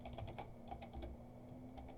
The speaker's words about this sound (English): Stop typing, so.